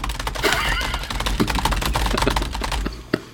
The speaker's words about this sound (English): Oh, God, I opened a bunch of shit by accident by pounding on my keyboard.